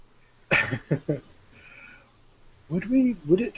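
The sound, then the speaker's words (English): A voice imitates a creature snuffling under a door, Jurassic Park-style breathing: three quick, breathy sniffing snorts, a brief pause, then a longer, throatier snuffle with a low, growly, voiced edge. “It's doing the Jurassic Park breathing under the door thing.”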